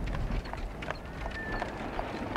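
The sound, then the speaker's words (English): Horse hooves clip-clop in a quick, steady rhythm over a low rumbling background, with a brief thin whistling tone midway through; no one speaks. “We haven't got a horse.”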